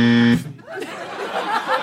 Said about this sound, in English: What happened? What a deeper buzz than before. That was such a, we used to have a nice little bzz, now it's like a fucking thing.